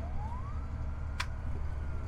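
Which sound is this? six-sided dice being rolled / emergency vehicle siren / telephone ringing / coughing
emergency vehicle siren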